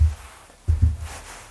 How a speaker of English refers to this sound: Ooh, I've got pine cones on this table, I'm knocking them now.